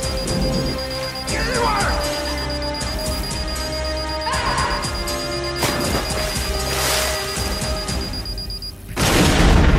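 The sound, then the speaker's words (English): Loud, rumbling explosions burst repeatedly in a dense, cinematic mix from the finale of Albert Pyun's film Blast, with a squealing rusty-gate creak sound effect layered over the blasts and a final heavy boom at the end. “Did you catch the rusty gate sound effect playing over the explosion?”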